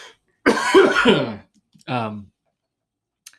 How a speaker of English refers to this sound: I'm about to cough. Hold on a second.